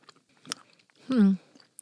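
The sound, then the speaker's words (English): Crunchy chewing of a peppermint Oreo cookie, a few crisp bites and scattered crumbly crackles, followed by a short hummed vocal sound from the person eating. “Anything really coming after the cheese crunchy? I would say it can't hurt to get them. If you like Oreos.”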